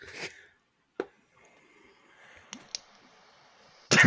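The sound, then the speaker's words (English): Dice clatter across a table in a series of sharp, irregular clicks and taps, spaced apart, ending with a louder, denser rattle. “And I'm going to roll the big chunk of frickin'... You're not terrible dice.”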